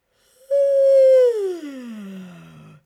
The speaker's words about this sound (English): So let's start with a good yawn stretch.